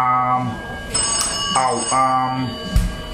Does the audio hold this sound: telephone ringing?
yes